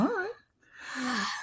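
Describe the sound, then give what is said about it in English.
A loud, vocal yawn: a short voiced rise at the start, a brief pause, then a long breathy exhale with a low pitch that slides downward, lasting about a second. “That was another yeller yawn there, buddy?”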